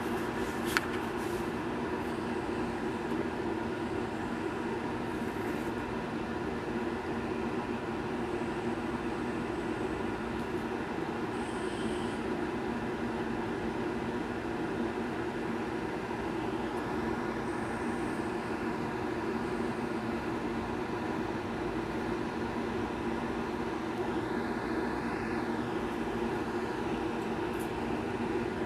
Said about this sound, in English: Sorry if this sounds bad, because I still have the fan on.